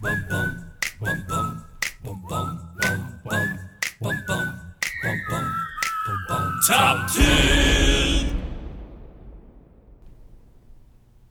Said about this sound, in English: I hope it worked, dog. Top 10. I hope that jingle worked. If not, I mean, sorry, y'all. We did. Yeah, let's say that's the jingle. Put that in.